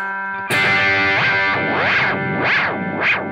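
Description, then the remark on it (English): A distorted electric guitar chord rings out through an all-analog delay pedal with its time control turned down to a short slapback, its repeats swooping up and down in pitch in a steady, wavering cycle. It is loud and sustained, with no talking. “Yeah, it's almost like a spring tank slapping back.”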